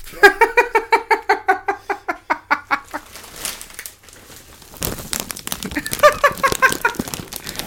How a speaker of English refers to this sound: Yeah, you like that? You like it when we crunch the bag? Do you want the bag? Okay. Oh, that's fucking annoying. Does that give you tingles?